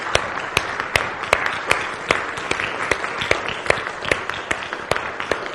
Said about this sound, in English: Just give them a clap of praise for this morning. Hallelujah.